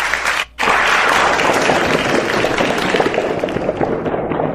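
A crowd breaks into loud, dense applause for a joke, many hands clapping in a steady rush after a brief gap at the start, sustained throughout with no voices standing out.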